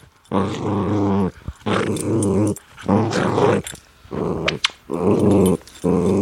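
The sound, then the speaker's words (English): A dog growls loudly in a run of five or six rough, rumbling bursts, each lasting about a second with brief pauses between, playful rather than menacing, as it plays and climbs on a person while wagging its tail. “And if I pet him, he growls.”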